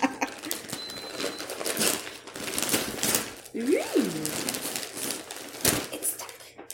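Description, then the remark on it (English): Rustling and ripping of paper and packing tape as a gift sealed with packing tape is torn open, with irregular crinkly bursts and a brief squeaky rising-falling tone partway through. “So I couldn't find normal wrapping paper. I couldn't find normal tape, so I had to use packing tape.”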